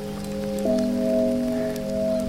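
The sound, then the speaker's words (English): Light rain patters softly and steadily, a fine hiss of scattered drops under a steady low humming drone that shifts pitch slightly partway through. “Is it raining? Just a little sprinkle.”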